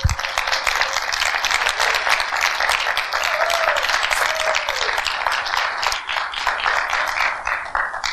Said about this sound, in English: Yeah, I think they need a round of applause.